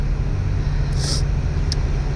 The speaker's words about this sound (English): I let this big truck in. Oh, man. This road is cracking today.